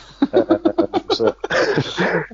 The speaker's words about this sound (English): Sorry. I had a real cough in my throat there. I'm sorry.